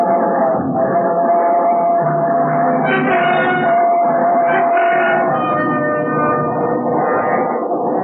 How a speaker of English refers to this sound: It was only the train going through the tunnel, but it brought it all back.